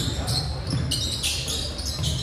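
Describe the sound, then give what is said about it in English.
Sneakers squeak sharply on a basketball court during a game with Lone Tree, in several quick, high-pitched bursts over a steady low rumble of gym noise, with a murmur of voices in the background. “A lot of sneakers squeaking around.”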